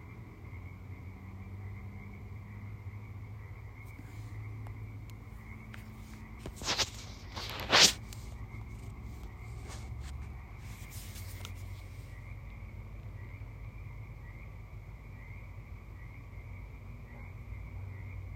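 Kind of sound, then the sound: animal, frogs croaking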